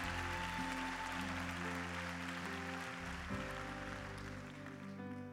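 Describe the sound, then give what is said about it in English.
An audience claps their hands for their pastors in a dense, steady round of applause, with sustained keyboard or organ chords ringing underneath and shifting partway through. “Come on, can we just give a big hand clap for our pastors?”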